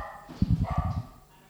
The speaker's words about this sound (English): Pause for dogs barking.